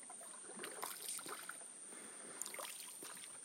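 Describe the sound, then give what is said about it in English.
Quiet paddling from a small boat on calm water along the edge of a lake, searching for birds and other animals. Soft splashes and trickling drips sound as the paddle dips and lifts, over a faint steady background hiss. “We're in a boat paddling along the edge of the lake, searching for birds and other animals.”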